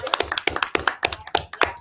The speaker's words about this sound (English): We're clapping? Yeah, we're clapping for it.